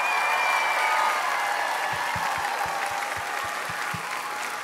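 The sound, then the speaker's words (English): An audience applauds steadily for students, a dense wash of many hands clapping that holds for several seconds and eases slightly toward the end, with a few low thumps breaking through partway. “Well, let's go ahead and give our students one more round of applause.”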